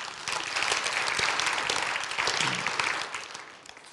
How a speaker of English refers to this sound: Go ahead and clap.